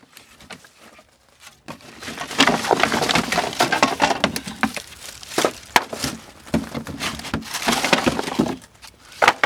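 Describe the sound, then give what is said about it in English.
Firewood is dropped and tumbled into a fire pit to get ready to start a fire, a dense run of loud wooden clunks, knocks and scraping clatter that starts after a quiet second and continues unevenly to the end. “We then get the wood ready to start a fire, unloading it into the fire pit.”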